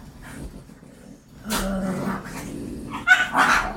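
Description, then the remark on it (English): Dogs bark and whimper in a few excited bursts, a sharp yelp near the middle and a flurry of higher whines toward the end, moderately loud. “Oh, man, his dogs are freaking out.”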